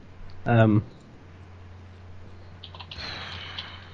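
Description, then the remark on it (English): A short vocal sound opens, then a quiet patter of keyboard typing follows, soft irregular clicks over low background hum, as someone Googles a favourite Christmas movie. “I'm not, that wasn't me typing. It's me what typing.”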